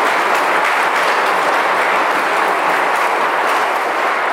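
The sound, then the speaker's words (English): A church audience applauds all of its deacons together. A dense, steady wash of many hands clapping at once stays loud and sustained throughout, with no voices rising above it. “A round of applause for all of our deacons.”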